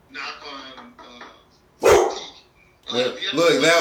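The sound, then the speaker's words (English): A dog lets out one sharp, loud bark in a brief pause between stretches of a person talking; it barks because it thought somebody was knocking at the door. “My dog heard you. He thought somebody was knocking at the door.”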